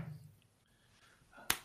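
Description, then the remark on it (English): A single sharp knock, struck once in place of a gavel, lands near the end after a stretch of quiet low background noise; the hit is crisp and fairly loud. “You should be the one doing the knocking there, not me.”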